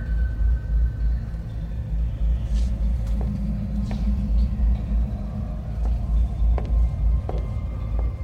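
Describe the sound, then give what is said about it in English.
A deep, steady thrumming rumble like giant power-plant turbines fills the whole clip without letup, with a few faint sharp clicks scattered over the top and no voices. “It's a big, all-encompassing thwump, like being in a power plant with giant turbines or in the bowels of a big ship where the engines are thrumming.”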